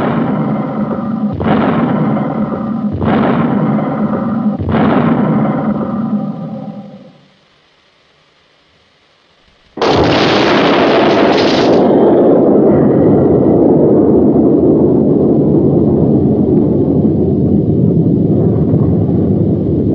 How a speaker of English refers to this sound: and he goes up to slam dunk it, and the minute it gets by the hoop, boom, explosion.